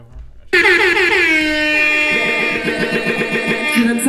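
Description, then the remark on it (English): A loud, blaring air horn sound effect bursts in after a brief pause and holds steadily for several seconds, its harsh stacked tones sustained with slight pulsing. “Let me get one of the air horns, man.”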